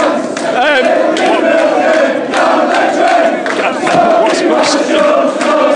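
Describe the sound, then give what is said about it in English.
Loud crowd of United football fans screaming and shouting continuously, a dense roar of many voices with sharp yells and rising cheers breaking through, no pauses throughout. “I think you just got loads of screaming and shouting, but never mind.”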